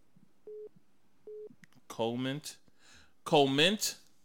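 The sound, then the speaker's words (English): A phone rings with an incoming call from the speaker's father, two short, evenly spaced electronic beeps at a steady pitch, fairly quiet. Louder voices then break in and talk over the end. “I'm actually getting a call from my from my pops.”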